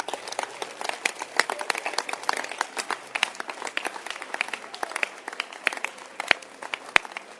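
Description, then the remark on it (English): A crowd claps hands together in a dense, continuous wash of sharp claps, steady and fairly loud for several seconds, with no voices over it. “Can you clap your hands?”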